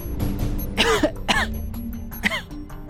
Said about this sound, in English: tried to speak, coughed, then sat up before trying again.